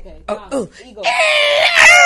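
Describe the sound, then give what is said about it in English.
A person imitates an eagle's cry: a few short throaty vocal bursts, then a long, loud, strained high-pitched screech held for about a second with a slight rise at the end. “Oh, eagle. So we fly high.”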